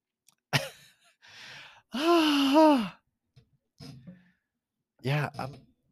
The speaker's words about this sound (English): Oh, I'm yawning. Oh, I'm stretching. Oh.